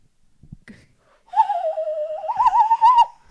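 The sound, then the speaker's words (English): A hollow, breathy whistle made with the hands, with no actual whistle, imitates a bird call: one sustained, wavering hoot lasting nearly two seconds, fairly loud, rising slightly before cutting off, after a few soft handling bumps. “That's just a whistle thing. that he's doing with his hands.”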